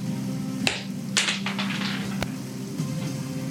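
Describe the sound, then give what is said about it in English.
Dice rolled in a tabletop game to confirm a hit with a claw attack rattle and clack across a surface: a sharp click, then a quick cluster of hard taps, and a final clack, all over a steady low hum with no voices. “Let me roll to confirm on the claw.”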